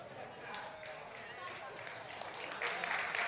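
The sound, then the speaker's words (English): Light, scattered audience applause with a few sharp claps over a steady crowd murmur, never swelling into a full ovation before picking up slightly near the end. “Now that's not getting as much of a clap as I thought it would”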